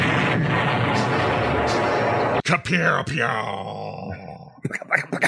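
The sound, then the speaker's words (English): A stock-footage explosion sound effect: a loud, roaring explosion with a dense rumbling blast that sustains for a couple of seconds, then cuts off abruptly, followed by voices reacting. “Here's the most stock footage freaking explosion sound of all time. It was used in everything”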